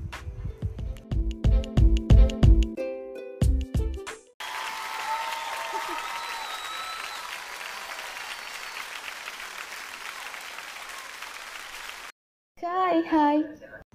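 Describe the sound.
A short burst of music gives way to about eight seconds of loud, steady audience applause with scattered cheers and whistles as a guest artist is introduced, cut off abruptly before a voice begins speaking.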